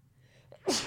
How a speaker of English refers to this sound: Excuse me, I have to sneeze. No, I don't. Yeah, I do.